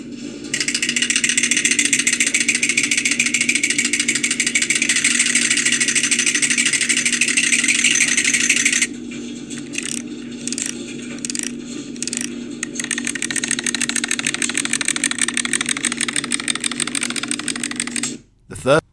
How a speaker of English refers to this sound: So the dry is going. All right, we're gonna add to the dryer right now.